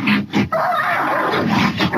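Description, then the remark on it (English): A three-year-old giant black schnauzer yelps and cries out in shrill, frantic bursts as a mountain lion pounces on it in the early evening in a gated community in La Verne, with loud, continuous distressed vocalizing and brief pauses between the opening cries. “Caught on camera, shrill sounds of terror as a mountain lion pounces on a family dog in Laverne.”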